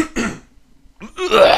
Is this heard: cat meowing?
no